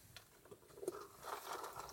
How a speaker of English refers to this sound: For the rest of the interview, you're going to hear our footsteps on the pebbly beach. It's a loud crunching sound, and so if you're into ASMR videos, this is definitely the CSEK News show for you.